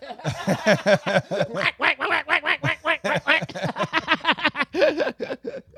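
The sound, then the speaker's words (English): A person imitates a duck, letting out a rapid run of nasal quacks in a steady, choppy rhythm for several seconds, fairly loud. “But you don't have to quack out the word penis, I hope.”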